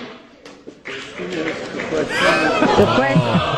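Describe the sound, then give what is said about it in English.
Cheering breaks out in the chamber after Nancy Pelosi announces 230 yeas to 197 nays adopting Article One, beginning as a low murmur of voices and swelling after a couple of seconds into a loud, sustained burst of whoops and shouts from many people. “Some cheering starts, and she gives him the look and the, No, stop it.”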